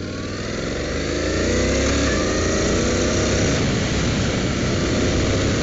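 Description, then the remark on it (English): A motorcycle with a dual clutch transmission (DCT) is started up, its engine rumbling loudly in a steady, throaty idle that builds slightly after a couple of seconds and then holds, with no voices. “Now let's get this thing started up. Oh, listen to that lovely engine sound.”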